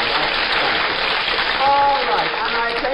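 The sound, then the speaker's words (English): An audience applauds a comedian's joke in a steady, dense wash of clapping that holds for the full three seconds, with a voice briefly audible beneath it partway through. “I like a little applause for that one.”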